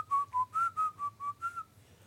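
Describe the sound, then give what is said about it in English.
A person whistles a short, bouncy melody of about seven clear, evenly spaced notes, a famous whistled tune from Snow White and the Seven Dwarfs, with no talking, before the tune stops and a faint low hum remains. “Wait, you forgot the most famous whistle tune.”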